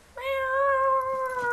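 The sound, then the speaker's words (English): A single loud, sustained cat meow, drawn out for over a second with a steady, slightly wavering pitch, with no talking. “And as always, we're filmed in front of a live studio audience of cats and one hyperactive Carnage.”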